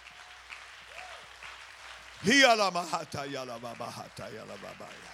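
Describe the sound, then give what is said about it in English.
A church audience claps steadily in praise of God in a dense, continuous patter, then a loud, high-pitched voice shouts and whoops over the applause for the last few seconds. “Clap your hands. Let's give him the praise.”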